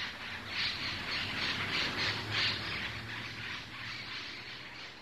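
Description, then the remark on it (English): A flock of wild birds, Connecticut's newest wild bird, squawks continuously in Milford, Connecticut, many harsh calls overlapping into a dense, pulsing chorus at moderate volume, with a low steady hum underneath and no one speaking. “So research biologists will spend the next 2 years trying to discover as much as they can about the state's newest wild bird.”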